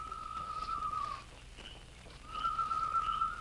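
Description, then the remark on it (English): A whistled imitation of a night bird's call given as a signal from the Lone Ranger: two long, steady, fairly high notes separated by a short pause, the first dipping slightly at its end, over a soft background hiss. “A few minutes after Lou and Sandy, the two outlaws, had entered Jim's place, Tonto heard a night bird.”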